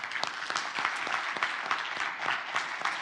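A crowd of people applauding together, a dense, steady patter of many hands clapping at moderate volume with no voices over it.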